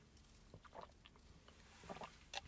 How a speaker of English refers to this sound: So I need to take a dramatic sip of water because I talk about 1,000 miles a minute. And I am going to be parched by the end of the story if I'm not careful. So pausing for dramatic water sipping. Stand by.